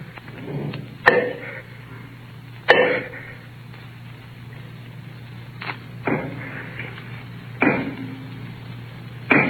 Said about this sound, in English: The sound continued. With my earthenware jug, I knocked against the wall where the sound came.